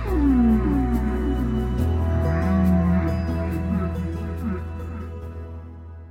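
Long, low whale calls moan and glide up and down, echoing over a steady underwater rumble, with faint ticking clicks in the background and no voices.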